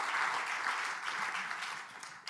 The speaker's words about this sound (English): So, y'all clap for him.